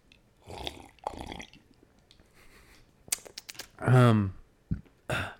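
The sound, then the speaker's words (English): Someone sips tea: breathy slurps, a run of quick wet clicks and swallows, then a short low voiced gulp or sigh and a final soft slurp. “Let's sip my tea real quick.”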